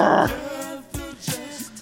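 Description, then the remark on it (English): A voice imitates a death metal growl: a rough, guttural burst at the start, then a few shorter raspy grunts trailing off, low and gravelly with noisy harsh texture. “Can you tell who sings it by certain tones that I do?”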